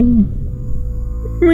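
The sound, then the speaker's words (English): A person voices two short, sing-song meows, one at the start and one at the end, separated by a brief pause filled with low background hum. “Meow. Meow.”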